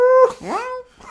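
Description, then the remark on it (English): A voice imitates little kitten mews, mimicking the sound a shuttle makes as it goes inside a hangar: a few high, squeaky, whimpering cries with rising and falling pitch, fairly loud, with a brief pause before a softer final mew. “It makes little cute kitten noises.”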